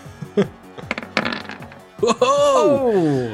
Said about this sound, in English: The dice got hit to a 20 after it rolled onto a 15 first. Yes, so that is a 26 to hit. A 15, though, on the dice is a hit.